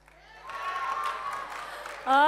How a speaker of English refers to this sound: You guys are going to have to choose. Whoever cheers the loudest. So, these guys here, cheer. Okay, the girls.